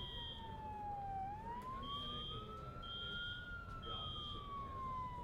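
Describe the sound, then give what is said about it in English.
A fire truck siren wails in a slow rising and falling sweep as the truck approaches, joined by a repeated high-pitched beeping tone, steady over a low rumble of traffic. “I think I hear a fire truck coming to check this out.”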